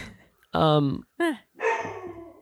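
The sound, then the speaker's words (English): A dog named Duke barks three times, loud, drawn-out yelping barks with short pauses between them, the last one longest and trailing off. “Duke's freaking out. Duke's a dog.”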